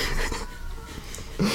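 Cats meow faintly downstairs through a steady hissy background, with a brief, louder, low-pitched cry breaking in right at the end.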